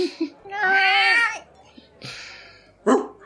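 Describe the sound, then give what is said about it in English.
A cat that has got out of a bag lets out a long, wavering meow, then a softer, shorter one, ending with a brief sharp squeak; the sounds are fairly loud, with no talking. “Get back in that bag, cat.”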